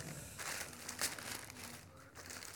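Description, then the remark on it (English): Wrapping paper crinkles and crumples continuously in irregular bursts, with a few sharper rustling peaks, heard on its own without talking, as a wrapped gift is unwrapped. “Now unwrap. It's like Christmas, except it's not. Go on. Yeah, you don't have to save the paper.”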